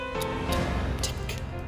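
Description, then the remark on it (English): A clock ticks steadily, its sharp, evenly spaced clicks sitting over a low sustained musical drone, with no one speaking. “And the time keeps ticking.”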